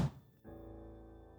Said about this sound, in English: If you hit the door now, it's going to be even more difficult to open. Even though I shouted, the person ignored me and didn't stop hitting the door.